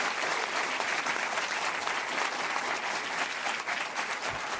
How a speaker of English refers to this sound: So I just want to invite a round of applause for all of them.